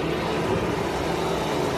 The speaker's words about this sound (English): Jeffrey Sofer invited Prince Khalid to take a trip on his private jet to Aspen, Colorado. You know what it is, we're taking off.